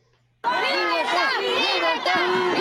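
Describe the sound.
A loud crowd of hundreds shouts and chants together at a street rally in North Bergen and West New York in support of reform in Cuba, many overlapping voices rising and falling in a steady roar after a brief quiet start.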